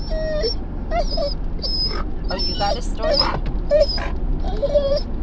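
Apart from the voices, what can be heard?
dog whining and vocalizing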